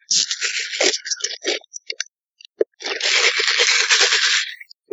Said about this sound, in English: Okay, for the record, I want you to take a sip of that soda close to your microphone.